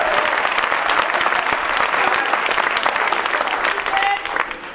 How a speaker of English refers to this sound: Look, somebody don't want to clap to that.